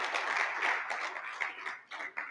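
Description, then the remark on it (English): An audience at a Faith Life Christian Ministries church service applauding together, a dense, steady wash of many hands clapping at once, fairly quiet overall with a slight dip and swell near the end. “Clap those in that are joining us online that'll see.”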